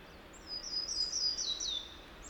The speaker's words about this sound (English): My second warbler of the year. I think that's a yellow rumped. Or maybe not. Actually, I'm not sure which warbler that is.